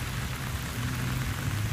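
Heavy rain pours down in Fayette County, southeast of Austin, in a steady, dense hiss with a deep rumbling undertone throughout and no voices, loud and continuous from start to finish; the rain caused flooding and road closures.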